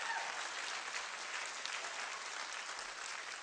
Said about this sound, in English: You better clap on this side like you actually get it.